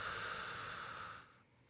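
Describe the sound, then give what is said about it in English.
A deep breath in and exhale, heard as a soft, airy rush of air lasting about a second before trailing off into near silence. No one speaks. “Take a deep breath. And just exhale.”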